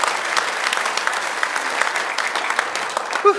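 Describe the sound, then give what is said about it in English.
An audience claps steadily for the kids, a dense, sustained patter of many hands with no pauses, fairly loud throughout and no voices standing out. “Can we give them a clap for them?”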